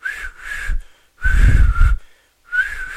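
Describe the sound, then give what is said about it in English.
Three breathy, airy whistle attempts from one person who cannot whistle, each a wavering high tone buried in heavy rushing breath, with short silent gaps between them. “That's my attempt at whistling. I can't whistle.”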